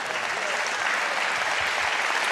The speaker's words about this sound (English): And by the way, let me say this. Thank you for clapping right there.